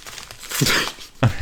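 Newspaper gift wrapping being ripped open, two quick rough tearing bursts, the second sharper and louder, with a faint murmur of a voice underneath.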